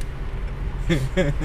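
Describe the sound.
A steady low rumble of road and engine noise fills the inside of a moving car, recently bought second-hand, with a couple of short voice sounds breaking in near the end.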